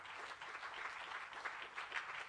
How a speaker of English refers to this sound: Won't you clap your hands one more time unto the Lord?